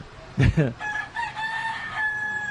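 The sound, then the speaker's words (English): A rooster crows once, a loud, strained cock-a-doodle-doo with a harsh start that trails into a long, wavering held note. “Call that rooster. Go away, rooster.”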